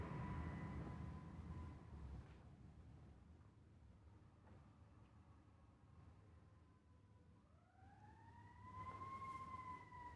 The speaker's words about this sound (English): So just switching just for a moment here, hearing that siren, just sending loving kindness to wherever that siren is heading.